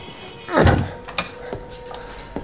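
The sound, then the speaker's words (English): A door handle clicks and a door swings open with a dull thud, followed by a couple of light clicks a moment later, with no talking. “The door handle is... Yes.”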